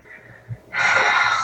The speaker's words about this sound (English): I'm having a tough time breathing. My heart's beating fast. I'm starting to have a tough time breathing. My palms are sweaty. My heart is racing.